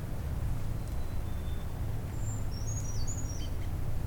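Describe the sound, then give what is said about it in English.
A bird to the north sings a short run of high, thin whistled notes in the second half, faint above a steady low rumble of background noise. No one speaks. “Oh, another one singing north of here.”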